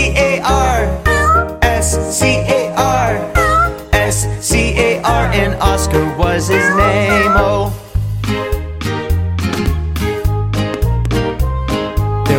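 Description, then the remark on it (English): Repeated cat meows glide up and down over a bouncy musical backing with a steady bass line and beat, the meows closely following the melody for the whole stretch. “There was a farmer who had a cat, and Oscar was his name.”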